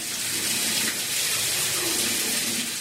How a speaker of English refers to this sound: And top it off with a cold shower.